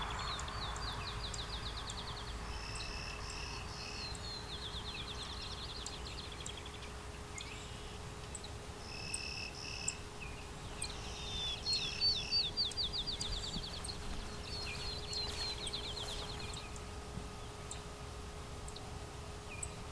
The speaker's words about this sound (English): Field sparrow.